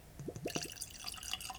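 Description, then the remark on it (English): Ardbeg Committee release whisky (50.1% ABV) glugs from a bottle into a glass: a few quick rising gulps, then a soft, bright trickle and splash as the pour settles. No one speaks. “So let's go and get it poured.”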